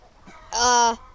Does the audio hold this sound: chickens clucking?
yes